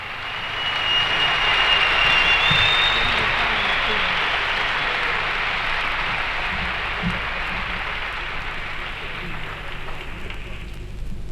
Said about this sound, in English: So let's have a listen. I've never heard this. It begins with some clapping because it's live. It does. Okay.